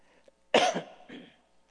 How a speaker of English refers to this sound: Here comes a... Anybody want to buy a horse? Am I invoking you to cough? I'm sorry, folks.